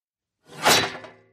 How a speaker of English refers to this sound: Its metal leg banged on the floor with each shuffle forward, and he started to shake like a wet dog to try and get himself free.